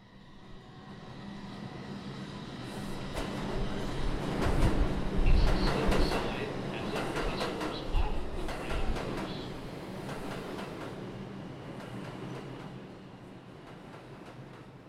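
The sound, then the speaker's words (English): A New York City subway train riding from Queens to Manhattan rumbles along the tracks with a steady low roar, swelling louder midway with rattling clatter and metallic screeches before settling back into a constant hum. “while riding the subway on my way to Manhattan from Queens.”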